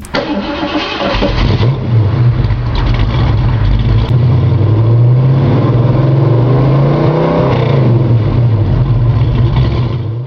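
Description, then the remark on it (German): A Ford Mustang engine cranks and fires up, then settles into a loud, deep rumble with revs swelling and dropping, with no voices. “Also, steig in deinen Mustang und ich erkläre dir unterwegs, warum du die richtige Entscheidung machst.”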